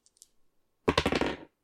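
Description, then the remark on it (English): A few light ticks, then a short burst of rapid hard clattering as dice tumble and rattle across a table for about half a second before stopping, landing on big numbers. No voices. “Ah, big rolls there, big numbers.”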